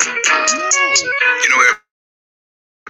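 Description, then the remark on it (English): A phone rings with an incoming call in the middle of a show, a short melodic ringtone, a bright tonal tune lasting under two seconds before it cuts off abruptly into silence. “Someone trying to get me to take a phone call in the middle of the show.”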